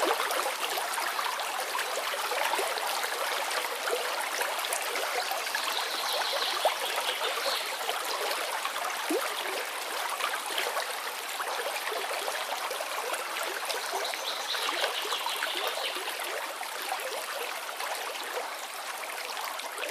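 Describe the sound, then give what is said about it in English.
A stream trickles and babbles steadily from start to finish, fairly even in loudness, with a constant bright splashing texture and no voices. “So that's why water is one of my favourite ways of thinking about the Holy Spirit.”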